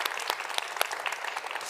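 Church audience applause at Uptown Church, for a man who shared his story: a dense, steady patter of many hands clapping at moderate loudness, with a few sharper individual claps standing out, and no talking.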